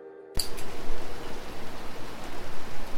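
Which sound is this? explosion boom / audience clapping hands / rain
rain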